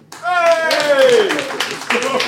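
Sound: audience applauding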